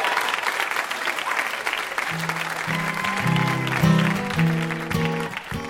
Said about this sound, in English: One more round of applause for our VIP, Justin Long.